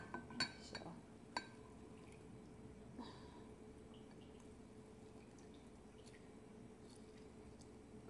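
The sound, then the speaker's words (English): A few light glassy clinks, like a measuring cup knocking against glassware, come in the first three seconds. Then only a low, steady background hum remains. “I'm trying not to knock over the measuring cup.”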